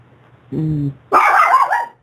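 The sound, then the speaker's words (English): A dog gives a low, drawn-out growl-like woof followed by a louder, higher, rough bark with a slight whine, two loud vocalizations with no talking. “The dog's telling something.”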